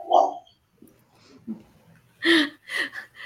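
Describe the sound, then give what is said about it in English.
A dog named Molly Bloom gives a few short, breathy whimpers and snorts, one near the start and a cluster of louder bursts near the end, with quiet gaps between. “And here's Molly Bloom in the background, my dog.”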